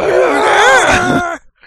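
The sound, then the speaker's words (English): A voice imitates a video game character's yell during a move where he flies across the screen, which some call the Superman: one loud, strained shout held for over a second, its pitch swooping up and back down before it cuts off abruptly. “Back in the day, I always used to call it by what he yelled out.”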